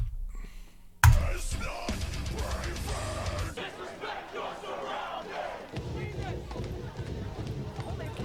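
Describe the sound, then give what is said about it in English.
A loud concert crowd shouts and sings a song in unison without the music, voices massed into a dense, continuous roar that bursts in after a brief quiet moment and carries on with little sign of instruments. “But there's just something a little cringe about the crowd yelling it without the music.”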